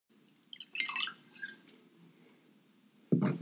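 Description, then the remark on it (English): Wine being poured into a glass: a few bright, splashy gurgles clustered in the first second and a half, fading to quiet, then a single dull thump at the end. No talking. “That was me pouring a glass of wine because I want to cheers Ultra Luxe Linens, the podcast sponsor.”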